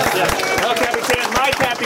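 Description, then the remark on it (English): An audience at the El Capitan theater applauds in a dense, steady wash of many overlapping claps, loud and continuous throughout, with crowd voices mixed into the clapping. “Thank you so much to the El Capitan for hosting our screening. Let's give it up for them.”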